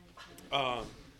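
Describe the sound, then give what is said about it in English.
A dog with a mask in its mouth lets out a brief, high-pitched whimper, a single whiny note that drifts downward in pitch, after a soft shuffling sound. “Oh, my fucking God, this dog.”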